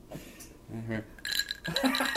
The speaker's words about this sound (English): Proof. Nothing sounds like ice in a glass. Nothing else.